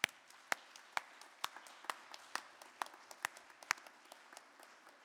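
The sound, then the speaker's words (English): A church audience at Christ the King parish claps together in a steady, fairly loud round of applause to express gratitude, sharp individual claps standing out above a dense, even patter that carries on for several seconds. “So let's just clap for a moment to express that gratitude.”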